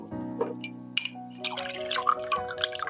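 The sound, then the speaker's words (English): A low steady hum with a brief glassy ring, then Hendrick's gin pours into a glass, a burbling, trickling splash of liquid that runs on unevenly to the end. “So let's stick a little bit of Hendrick's gin in it.”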